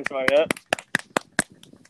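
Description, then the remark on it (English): Six sharp hand claps in applause for Miss Marriott, in a steady, evenly spaced rhythm, each crisp and bright, with a brief voiced whoop over the first couple of claps before the clapping continues alone. “Clap for Miss Marriott.”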